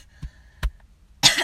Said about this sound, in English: Yeah, so when I cough, it's no joke. I just, like, I fucking cough like crazy.